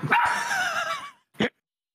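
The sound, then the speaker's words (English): A dog named Twitch chat barks: one long, strained, whiny bark that trails off, then after a brief pause a single short, sharp bark, with no one talking. “His dog's name is Twitch chat, apparently.”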